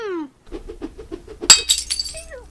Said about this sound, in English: And this is where we perfected the skull crunch sound, which we've used a lot since. It's one of my favorite sounds to use. Is it so gross? It's so good. I'm trying to remember though. Celery. It is all celery,